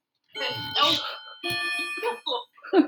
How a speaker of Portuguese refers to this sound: É um cuco.